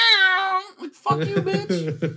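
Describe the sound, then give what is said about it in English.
A loud, drawn-out meow, a human voice imitating a female cat that meows every time the speaker comes home from work, rings out alone for about half a second. After a short pause, animated talking follows. “Yeah, she does that every time I come home from work. I'd be gone, and then she'll come back home first, and she's like, meow!”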